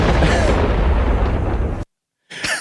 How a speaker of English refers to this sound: I like how much thunder there is in that clip. There's a lot of thunder. Maybe too much thunder.